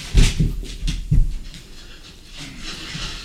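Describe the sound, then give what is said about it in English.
A long-haired dog pants in quick, breathy bursts while a man wipes its rear, a few sharp pants at first, then softer, steadier breathing with faint rustling in the background. “I'm sorry, I just thought I never thought I would watch a man wipe a dog's ass.”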